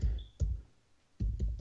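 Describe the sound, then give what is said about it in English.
Someone types hard on a computer keyboard while trying to find a website, the keystrokes landing in an uneven rhythm: a couple of sharp clacks, a short pause, then a quick cluster of three more, fairly loud with no one talking. “I hear you clicking, man. You trying to find it. I know. Yeah, like clicking that keyboard hard as hell.”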